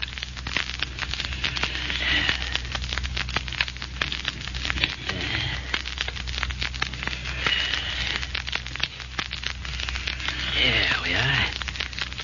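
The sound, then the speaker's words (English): The diamond of a ring scrapes across a glass window pane to cut it, in a steady, gritty, crackling rasp, with a few thin squeals rising now and then over a low, constant hum. “Take my ring and use a diamond on that window pane.”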